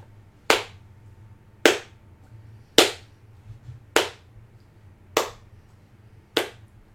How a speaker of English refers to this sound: The guy's clapping, I'm shaking my head.